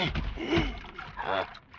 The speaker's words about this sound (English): The water. It's running out.